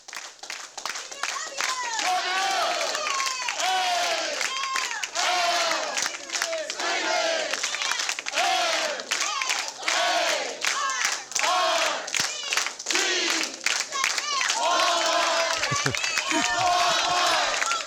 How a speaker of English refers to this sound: There's a video here of these people cheering in downtown Los Angeles. Yes, this is downtown Los Angeles. Well, this is what they actually do.